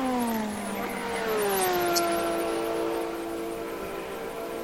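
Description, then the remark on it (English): A GT3 race car engine screams past at speed on a circuit, its steady high-pitched whine sliding lower as it goes by, loud and sustained over a constant rumbling background with no voices. “Porsche is closing, but not closing quickly enough, I'm afraid.”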